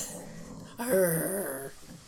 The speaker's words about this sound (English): Sorry guys if you had to hear my dogs play fighting over here.